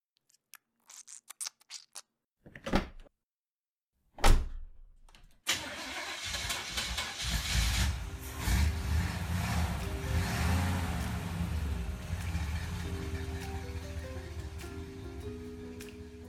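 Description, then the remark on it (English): A few sharp clicks and clunks, then a car engine cranks and roars to life, settling into a steady running drone that carries on as the vehicle pulls away, fairly loud. “It ain't that the Fjord Noir is the most chosen car amongst private dicks.”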